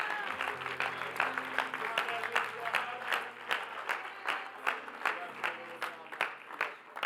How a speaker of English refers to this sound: In Jesus' name, would you clap your hands unto him?